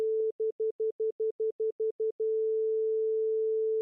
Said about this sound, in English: if I just played back a recording that only had the main pitch in it, it would sound like a really boring pure tone